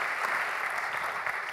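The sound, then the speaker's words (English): An audience applauds steadily as a speaker is welcomed, a dense wash of many hands clapping at an even volume throughout, with no individual claps standing out and no voices. “So let's have a round of applause for John.”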